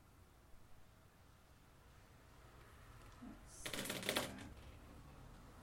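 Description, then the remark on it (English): A brief burst of rattling clatter as a handful of dice are rolled and tumble onto a surface, lasting under a second against a quiet background hiss. “That many dice should not roll 2 successes.”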